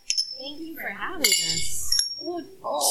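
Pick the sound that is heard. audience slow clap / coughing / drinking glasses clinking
drinking glasses clinking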